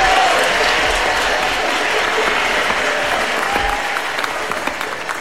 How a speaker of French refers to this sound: Voici nos premiers concurrents, les applaudis bien fort.